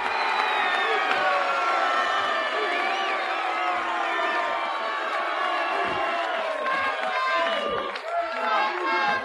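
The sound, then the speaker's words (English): A large arena wrestling crowd roars, cheers and applauds continuously for the wrestlers, especially the Junkyard Dog and Hacksaw Jim Duggan, with scattered whoops and shouts rising over a dense, steady wall of noise that fills the whole stretch at high volume. “There's quite a lot of applause for all of these men, but especially for the Junkyard Dog and Hacksaw Jim Duggan.”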